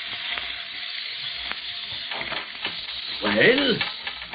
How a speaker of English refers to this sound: Fuse is burning fast.